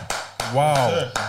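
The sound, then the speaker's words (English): A lone person claps slowly as a guest is introduced on a show, just three sharp, separate smacks spaced unevenly, while a voice sounds briefly in between them. “Only one person clapping.”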